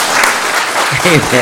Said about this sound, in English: Let's give the Lord a clap, okay?